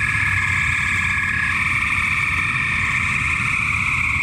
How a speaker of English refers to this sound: these are spring peepers. And according to her, they're very active in the spring the peepers.